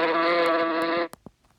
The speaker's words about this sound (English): It buzzed just like that. And it was a terrifying and loud noise. That was a very loud noise. Like, that's not what people normally want to hear.